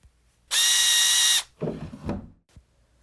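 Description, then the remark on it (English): A power tool tightening the nut around a wheel of a cabinet unit spins up in a single loud, steady high-pitched whir lasting about a second, then cuts off, followed by a few rattling metallic clanks and knocks. “Now put the drawer back and tighten the nut around the wheel for me.”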